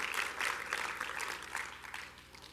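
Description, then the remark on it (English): An audience claps their hands unto the Lord together in a dense, steady patter of many hands, fairly soft overall and tapering slightly toward the end, with no voices standing out. “Can you clap your hands unto the Lord if you believe it and if you're ready for it?”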